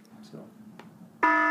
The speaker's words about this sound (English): Oh, there it goes. It's our alarm. That means we got to start wrapping up here because we're taking up way too much time.